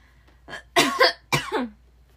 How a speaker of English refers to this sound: This podcast is just going to be me coughing. Gross.